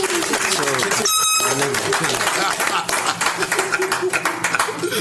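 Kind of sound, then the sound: crowd, audience clapping and cheering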